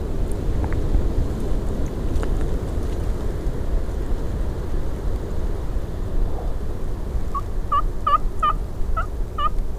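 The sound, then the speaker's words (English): A wild turkey gobbles in a field near the end, a rapid, warbling burst of bright, repeated notes rising over a steady low rumble of wind noise, with no talking. “There he is in the field.”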